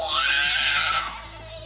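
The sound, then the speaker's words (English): A voice lets out a shrill, wavering screech imitating a female vampire spawn being run through with a blade, loud for about a second before trailing off into a thinner, quieter tail. “You run it through this vampire spawn. She screeches.”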